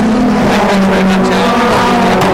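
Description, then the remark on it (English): Racing car engines, including a Honda and a Hyundai, roar loudly and continuously at the Croft circuit, a dense droning growl with slight shifts in pitch as the cars power along the circuit. No one speaks. “Gets on the gas. The Honda still ahead of the Hyundai. The next two over the line.”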